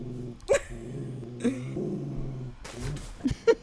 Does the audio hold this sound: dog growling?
yes